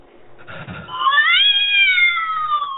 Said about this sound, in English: Now my cat's in here and oh my god, my Tourette's is acting up and my cat's here